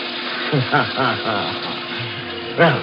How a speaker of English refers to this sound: I turned on the faucet in the sink. Splashed and drenched myself from head to foot.